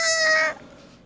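A loud, shrill royalty-free tire screech sound effect holds one steady, bright squealing pitch for about half a second, then cuts off abruptly into a faint hiss. No one speaks.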